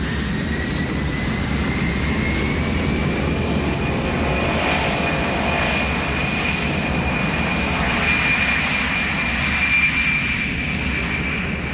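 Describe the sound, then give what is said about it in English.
A loud, steady jet engine roar of an airplane taking off, with a high whining tone riding over dense rumbling noise throughout and no voices. “It wasn't actually till the plane had taken off and was in the air when they were going around with the meals.”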